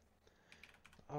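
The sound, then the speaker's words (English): A quick burst of faint, sharp clicks, like a computer mouse being clicked rapidly several times in a row, before a voice starts up at the very end. “Oh, there's the hyper-clicking.”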